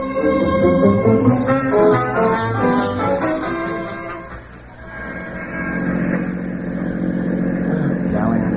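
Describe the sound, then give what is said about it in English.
A car engine runs loudly as a car comes out of a side street, its droning tone shifting in pitch as it revs, easing briefly midway before building back up. “There's a car coming out of the side street.”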